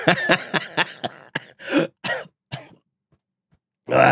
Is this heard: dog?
no